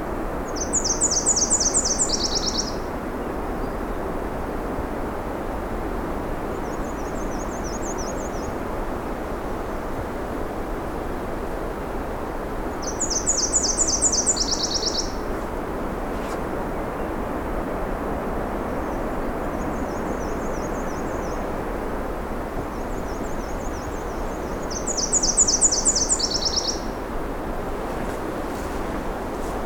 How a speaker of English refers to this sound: C-bit-C-bit-C-bit-C-C-C-C is the Nashville Warbler song.